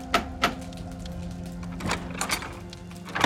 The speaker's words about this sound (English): After midnight, someone knocked.